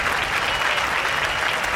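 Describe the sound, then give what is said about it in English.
A crowd applause sound effect: dense, steady clapping from many hands that holds at an even, fairly loud level for about two seconds, with no voices over it. “Hit the crowd, yep.”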